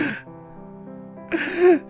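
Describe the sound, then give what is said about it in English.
A person vocally imitates a woman's sharp, excited gasp at an actor on screen: a breathy intake followed by a rising, strained voiced catch, fairly loud, with no other talking. “She would gasp.”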